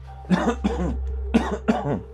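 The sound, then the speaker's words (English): Four harsh coughs arrive as two quick pairs with a short pause between them, over a low steady hum and with no talking. “Gotta strip down, turn around, squat and cough.”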